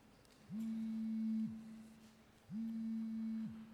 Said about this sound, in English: Does that make anybody else uneasy? As soon as I hear that noise, I wonder, is that my phone going off? You can stop looking for your phone. That's a prop.